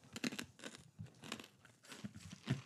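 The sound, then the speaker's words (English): Wet, crunchy chewing with rough tearing bursts as tough jackfruit is bitten and ripped apart, a steady irregular rhythm of bites and grinding at moderate loudness, no talking. “I'm waiting to start chewing again for a second.”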